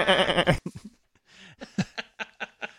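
A loud, wavering goat bleat opens, then breaks off into a string of short, choppy bursts that trail away over a couple of seconds.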